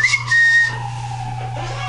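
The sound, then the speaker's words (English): An ambulance siren, the second ambulance heard that night, wails as it passes, its steady tone sliding gradually lower in pitch over a constant low electrical hum, with no talking. “There are more ambulances. That's two ambulances tonight.”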